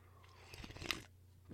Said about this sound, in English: So I'm going to have a sip of coffee. Hold on.